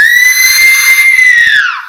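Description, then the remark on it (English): A single loud, piercing, shrill scream echoes through a graveyard at night, holding a steady high pitch for over a second, then sliding downward and trailing off. No one speaks. “As a scream echoes through the graveyard, horrifyingly shrill.”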